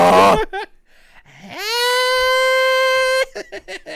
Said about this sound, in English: Yeah, I think TikTok snore. I think that was somebody snoring legit.